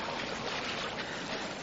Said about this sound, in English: A second time the water is being poured upon the wood and offering.